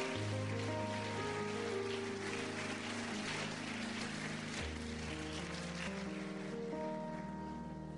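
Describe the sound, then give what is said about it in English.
An audience at a bilingual Portuguese-English church service claps in praise to God, a dense, steady burst of applause that holds for the whole stretch, with sustained organ-like chords ringing underneath; the clapping stays loud with no voices. “Uma salva de palmas, clap for God.”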